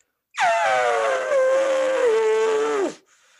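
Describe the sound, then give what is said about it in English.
A person imitates an elephant with one long, loud, brassy trumpeting call that slides steadily downward in pitch and sags at the end, like air escaping. No other talking accompanies it. “That elephant sounds like it was deflating.”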